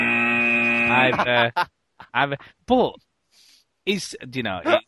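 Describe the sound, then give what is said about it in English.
A loud, flat buzzer tone drones for about a second, harsh, then breaks off into bursts of speech with short pauses between them. “Do I hear you hovering over the buzzer sound?”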